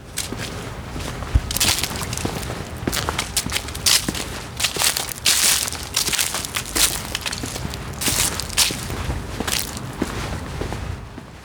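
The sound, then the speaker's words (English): Steady footsteps walking at an even pace in sunshine, each step a crisp, crunchy scuff over a soft background hiss, continuing throughout with no voices. “And now, I'm alone, walking with sunshine.”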